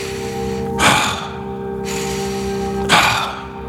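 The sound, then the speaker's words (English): Two sharp, audible inhales spaced about two seconds apart, each a brief rushing rhythmic breath of a breathing exercise done lying or sitting down, over a steady low background hum. “It's a very rhythmic breath. It's inhale.”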